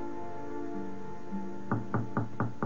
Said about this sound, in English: Whenever there was a knock at the door, we went through the same grotesque performance.